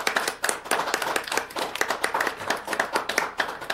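An audience applauds steadily for several seconds, many hands clapping in a dense, overlapping patter of sharp, bright claps at an even, fairly loud level, with no one speaking.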